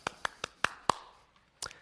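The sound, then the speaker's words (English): Six sharp hand claps ring out loud, the first five in a quick, fairly steady rhythm, then a short pause before a final clap. No one speaks. “Do you give yourself a clap?”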